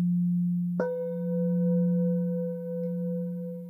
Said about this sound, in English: So now I'm just going to play all the different singing bowls together for you, just so you know what it sounds like or can hear what it sounds like.